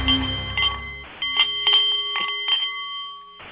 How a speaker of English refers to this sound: The Nepalese Meditation Bowl is chiming, and that means it is Tuesday and time for the Art of the CEO radio show